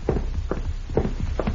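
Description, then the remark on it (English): Horses' hooves of riders arriving clop in a steady, uneven rhythm, several dull thudding hits spaced about half a second apart, moderately loud with no voices. “Somebody's riding in here.”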